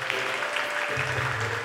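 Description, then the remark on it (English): A group applauding, dense steady clapping that fills the whole short stretch at a moderate level, with no voices over it. “a big round of applause.”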